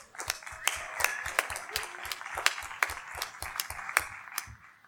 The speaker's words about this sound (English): Can I get a big round of applause for Dr. Marlene Tromp, please?